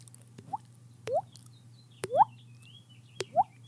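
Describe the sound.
A voice imitates water dripping into water, as done in a scene from the film Ferris Bueller's Day Off, making four hollow, rising plops spaced about a second apart, each with a brief click before it, over a low steady hum.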